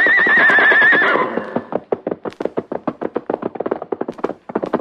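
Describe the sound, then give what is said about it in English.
A white horse lets out a loud whinny with a wavering pitch for about a second, then quick, steady hoofbeats pound rhythmically at a gallop as it leaves the hills and dashes ahead across the plains. “New adventure was ahead, and with a shout of defiance, he left the hills to dash ahead.”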